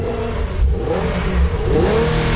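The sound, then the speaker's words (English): The turbocharged engine of a 2016 Infiniti Q50 sports sedan, up to 400 horsepower, revs hard, its pitch sweeping upward in a couple of loud surges with a deep rumble beneath. No one speaks. “The trio of turbocharged engines available in the Infiniti Q50 sports sedan.”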